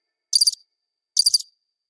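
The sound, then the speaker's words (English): A cricket sound effect: two short, high-pitched cricket chirps, each a quick trill of pulses, separated by a brief pause against total silence. Clear, with no voices. “I don't want to hear any crickets.”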